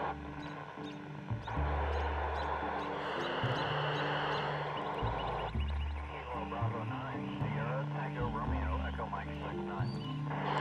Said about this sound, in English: Noisy birds, too.